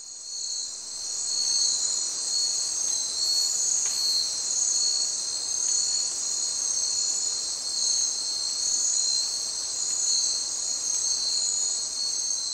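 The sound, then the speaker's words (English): A steady, high-pitched drone of crickets and other insects fills the night in a forest about two weeks after selective logging, continuous and even with no birds or other animals audible, only a faint low rustle beneath. “Yeah, you've lost the birds, you've lost the mammals, really you just have the background insects.”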